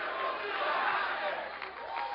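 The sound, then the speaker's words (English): A church audience roars with loud, sustained screaming and cheering that miracles still happen, many voices blending into a dense, steady wall of noise with a few higher shouts poking through. “Everyone scream, miracles still happen.”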